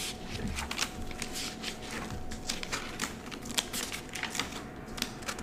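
A lot of papers rustle and shuffle continuously, with crisp crinkly bursts of sheets being leafed through and slid against each other, no voices present.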